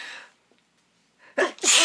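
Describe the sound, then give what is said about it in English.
A single loud sneeze with a quick sharp intake of breath just before it, following a brief pause after some faint background noise. “I like looked into …'s eyes right before I sneezed.”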